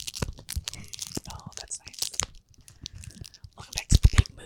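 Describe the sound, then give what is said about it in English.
Crisp crunching and crackling of stiff, brand-new, slightly sticky playing cards being handled, in irregular bursts that grow louder near the end, with a soft voice faintly underneath. “These are kind of sticky. They're brand new.”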